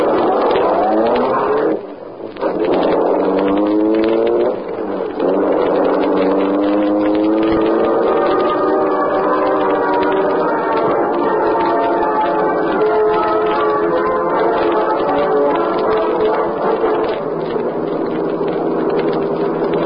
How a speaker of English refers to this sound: The great car roared into life. The section of wall in front raised automatically, then closed as the gleaming black beauty sped into the darkness.